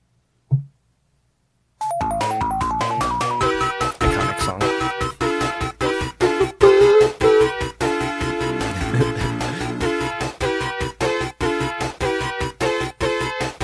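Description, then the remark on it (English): An upbeat chiptune-style video game theme for the game's first level plays loudly after a brief blip and short silence, with bright synth melody over steady, punchy rhythmic percussion and a bouncy bassline. “This is the first level you enter, so it's a very memorable song, because every time you restart the game, you're back here.”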